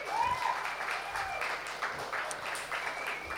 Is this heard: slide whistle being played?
no